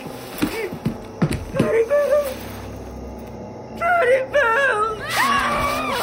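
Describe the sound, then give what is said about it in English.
A woman shrieks and wails in high, wavering bursts that rise and fall, growing louder and more frantic toward the end, with a few sharp taps early on. “Her shrieking chased after us.”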